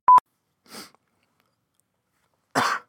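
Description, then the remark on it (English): A sharp click, then two harsh coughs into a microphone, spaced apart: a softer one followed about two seconds later by a louder, rougher burst, from someone with throat issues who may be getting sick. No one speaks. “Stop coughing into the mic!”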